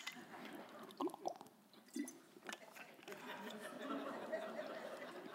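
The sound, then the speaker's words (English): Someone takes a few quiet sips of water during a break in speaking, with soft wet gulps and small mouth clicks spread over several seconds, and nobody speaking. “Water break real quick.”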